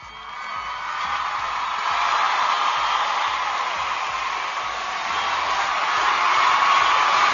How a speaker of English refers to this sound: So once a week, Channel Mom is going to give you a little mom applause, and here it is.